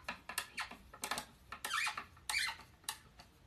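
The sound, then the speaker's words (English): A cabinet drawer squeaks and scrapes as it is slid in back and forth several times during furniture assembly, with two longer, pitch-bending squeals in the middle, fairly loud, with no voices. “It's squeaking like that.”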